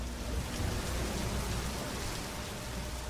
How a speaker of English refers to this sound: And remember, there's a storm going on this whole time. So at some point, Harley recalls waking up at night to the sound of thunder. Or at least he thinks it's thunder.